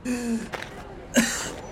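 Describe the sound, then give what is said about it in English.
A person takes a few sharp, ragged breaths, short airy gasps separated by brief pauses, with a strained vocal edge at the start. “Stop gasping like a fish and sit down.”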